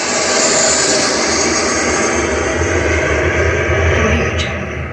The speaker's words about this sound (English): So you want to have a jet, a flyby of a jet or something, or here's an airplane taking off.